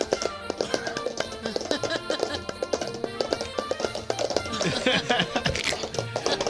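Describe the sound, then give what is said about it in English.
Tap dancing mimics a horse's hooves: a steady stream of quick, sharp taps and clacks in uneven clip-clop clusters, fairly loud and continuous, with faint tonal sound underneath. “That's a tap dancing horse. You're hearing it.”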